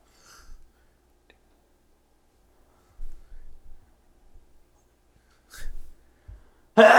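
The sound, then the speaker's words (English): A sharp, loud sneeze bursts out near the end, preceded by a quick intake of breath and a few soft, low thumps. “Bless you.”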